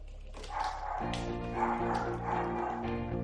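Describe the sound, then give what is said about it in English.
A dog barks several times in quick, uneven succession, loud, with a steady low hum running underneath throughout. “This is how we got our first dog right here.”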